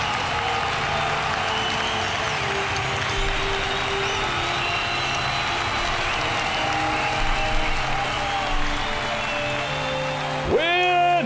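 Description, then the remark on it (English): A large crowd at a circus applauds steadily, a dense, sustained wash of clapping and murmur that holds at an even level, with a few rising whistles near the end. “and the crowd expresses their appreciation.”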